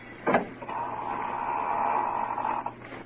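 A woman opens an inner door in a dimly lit house: a short thump, then a drawn-out, steady creak that holds for a couple of seconds before fading. It is heard alone, with no talking.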